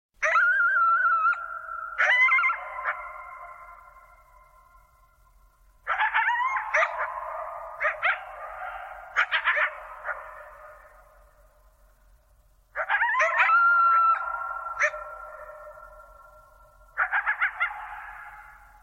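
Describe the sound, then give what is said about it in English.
Two coyotes howl and yip back and forth in three wavering bursts, their cries echoing and fading into quiet between calls, with no talking. “there's a poetics of space that is just really remarkable because when you make a quiet recording, like the recording of coyotes singing, is this a recording of coyotes or is this a recording of silence made audible by coyotes?”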